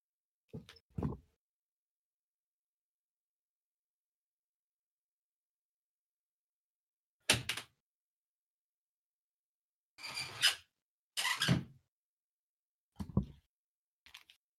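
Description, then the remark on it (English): Windows slide shut in a few separate bursts: a short scrape and thump, a long pause, then several grinding slides with bumps and clicks, fairly loud against silence, with no talking. “I need to close my windows.”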